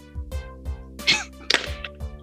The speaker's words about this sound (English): You slapped the easy button.